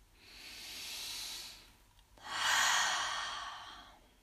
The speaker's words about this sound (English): When you've got your seat, take your hands down onto your knees and just take a big breath.